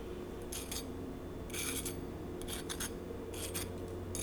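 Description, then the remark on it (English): A fork scrapes across a crispy saffron rice crust in a series of short, bright, raspy strokes coming in irregular bursts over a low steady background hum, with no talking. “Listen to this sound, food nerds. We've got a fork here.”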